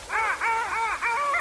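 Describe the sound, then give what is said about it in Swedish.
A chorus of sea birds, a small diving duck known by the old name körfågeln, calling together in repeated, rising and falling nasal phrases, several voices overlapping in a steady, fairly loud rhythm with no talking. The song comes from large flocks wintering out at sea in the Baltic Sea when the water is ice-free. “Eftersom den här sången ljuder ute till havs och kommer från stora flockar av fåglar som övervintrar ute i Östersjön när vattnet är isfritt.”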